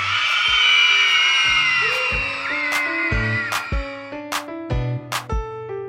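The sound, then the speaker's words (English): A group of girls cheers each other on, their high-pitched voices whooping loudly for the first couple of seconds, then fading beneath upbeat music with steady notes and sharp, regular drum hits. “We'll see how the girls' confidence grows as they learn new skills, use power tools, and cheer each other on really loudly.”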